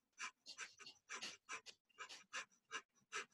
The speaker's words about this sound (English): Yeah, so essentially you're doing the breath of fire right there. Now, instead of sticking your tongue out and breathing through your mouth, you just close your mouth and continue that pumping motion and the breath through your nose.